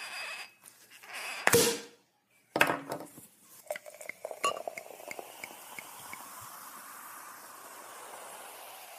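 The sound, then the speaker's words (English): A sharp cork pop bursts out of a prosecco bottle, followed by a second thud and a run of bright glass clinks, then a soft, steady fizzing hiss that lingers to the end, with no talking. “So without further ado, let's crack open some bubbles and get into the episode.”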